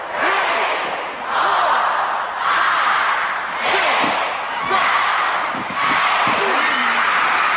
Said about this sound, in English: As a Texas death match, and this one certainly appropriately, there's the 30 seconds, and here's a count. Now listen to the crowd count.